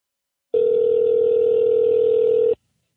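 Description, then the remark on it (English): A single steady telephone ringing tone sounds over the line for about two seconds, clear and fairly loud, with no voices, then cuts off into silence. “Let's see if this one goes through.”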